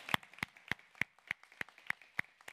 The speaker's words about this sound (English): First of all, I want to welcome you with just a round of applause, a hand clap to say thank you.